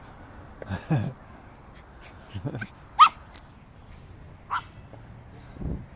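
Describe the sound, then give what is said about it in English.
An excited puppy wanting to play gives a series of short, high yips and barks mixed with whiny whimpers, scattered unevenly over several seconds, moderately loud, with low background rumble. “Oh, he wants to play.”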